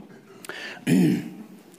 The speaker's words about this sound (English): Sorry, guys, I got a coughing.